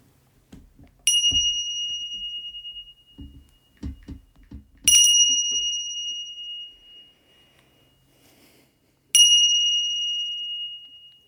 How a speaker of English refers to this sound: Now opening yourself to the sound of the three bells indicating the end of this meditation.